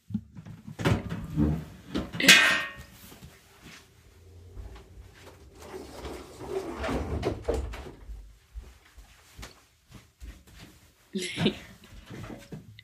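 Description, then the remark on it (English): A closet door is handled and pushed shut, with a couple of wooden clunks and a sharp latch click, soft shuffling movement in between, and another bump near the end. “Wait, I gotta go close my closet door.”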